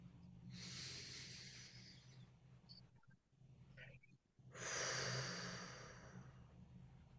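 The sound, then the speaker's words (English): Two slow, deep cleansing breaths taken with eyes closed: a long airy inhale through the nose, a pause, then a fuller, louder exhale rushing out through the mouth, over a low steady hum. “Some nice cleansing breaths here. In through the nose again. Out through the mouth.”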